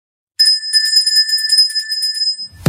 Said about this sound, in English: Can you hear that, studio owners? That is the bell of success. So that's what I like to do to energize myself within my home office or studio office. When I achieve a sale or a goal, I ring the bell, and I'm all about self-motivation.